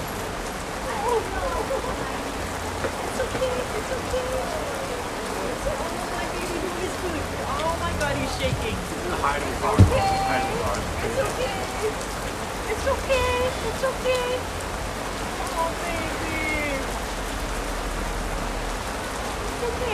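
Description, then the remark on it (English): Steady, dense rain pours down during a California thunderstorm, recorded on a phone at Point Dume, a broad hiss of drops pattering on surfaces, with a brief sharper crack of thunder partway through and faint voices murmuring underneath. “California Thunderstorms”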